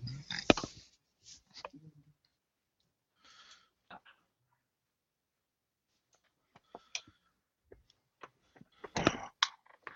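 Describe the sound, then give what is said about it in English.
Scattered rustling and shuffling with sharp clicks and bumps as a couple of pieces of paper are quickly grabbed from just out of reach and handled, coming in short bursts separated by quiet pauses, with a louder flurry near the end. “Well, in order to answer that to the best of my ability, I'm going to have to really quickly grab a couple pieces of paper I have just right out of my reach for just a moment.”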